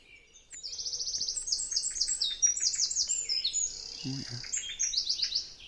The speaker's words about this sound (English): That blackbird there. That was a blackbird, yeah.